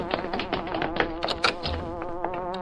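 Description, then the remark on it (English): A hornet-like buzzing sound effect announcing the Hornet right outside drones steadily, a rich harmonic whine that pulses and wavers in pitch for a few seconds with no voices over it. “Holy crow! Listen! The Hornet, right outside.”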